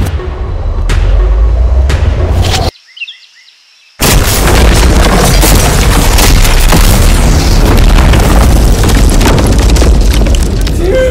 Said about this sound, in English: And before we blow up this car, I'm gonna put Feastables inside of it.